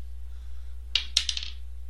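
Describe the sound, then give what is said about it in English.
A short clatter of dice on a hard table: a sharp first hit, then several quick bright bounces that settle within half a second, over a faint steady hum. “These dice are cursed.”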